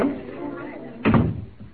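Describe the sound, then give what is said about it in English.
A door opens and shuts with one solid thud partway through, after a stretch of muffled voices and room noise. “Then, by all means, you lead the way. Through that door.”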